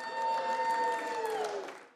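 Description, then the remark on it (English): A crowd bursts into cheering and applause after a Senate amendment vote on gain-of-function research funding in China is agreed to, a loud sustained wash of voices and clapping with whoops rising above it, fading out over about two seconds. “Cheers. Do you hear that?”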